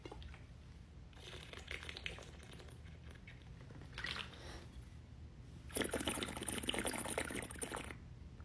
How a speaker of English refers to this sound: When I drink my water like this, I feel like a little hamster in a cage.